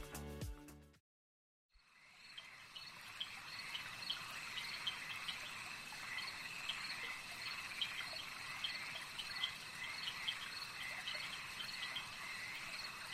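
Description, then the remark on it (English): A dense, steady swamp chorus of buzzing insects and chirping calls fills the air after a brief silence, with occasional bird or frog notes scattered through the continuous outdoor ambience; muddy, slow, waist-deep water laps against the roots of gnarled trees, with dragonflies flitting past. “You are standing in water, about waist deep. It is muddy and slow, lapping against the roots of gnarled trees which sprout all around you.”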